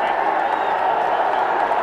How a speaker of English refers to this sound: Right, the crowd is roaring because it looks to me as though that ball has missed the glove and hit the shoulder.